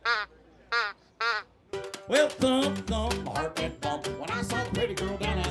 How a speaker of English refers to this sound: And back here, that's a duck call.